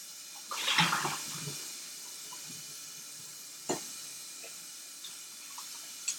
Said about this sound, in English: Rinse. Get all the soap off of the pot. Rinse. Try not to get water everywhere when you're washing it.